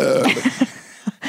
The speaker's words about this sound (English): Why don't you burp like that? Why don't you try it? Because it's your technique.